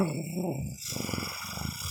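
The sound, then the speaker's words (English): A person imitates a wolf's growl during a tabletop role-playing game, as a character teleports behind a tree with Misty Step, making a low, rough, rumbling snarl that holds steady for about two seconds, fairly loud. “You appear behind the tree, and you hear a sudden wolfy...”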